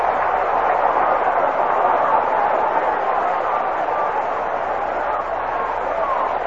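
A dense, steady roar of a large baseball stadium crowd at Comiskey Park during a game, loud and continuous throughout with overlapping cheers and chatter blending into a constant wash of noise.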